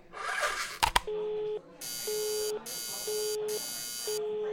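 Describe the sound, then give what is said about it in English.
A telephone call rings through a switchboard as an operator connects to the police department in Grover's Mill: after a few clicks, a steady low tone alternates with a harsher buzzing burst, repeating about four times in an even, mechanical rhythm. “Ringing the police department, Grover's Mill.”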